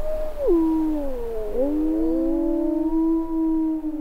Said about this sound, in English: Living on Earth's Explorer-in-Residence Mark Seth Lender headed out into the snows of Yellowstone to see and hear the wolves for himself.